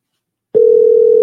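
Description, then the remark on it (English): After a half-second of silence, a steady telephone dial tone starts abruptly as a call is placed using the phone carrier, and holds at an even, fairly loud level, a clear continuous hum with no voices. “Call using phone carrier.”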